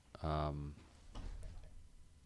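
An office chair tips back suddenly: a short, loud creaking squeal from the chair, followed about half a second later by a dull knock and some shuffling.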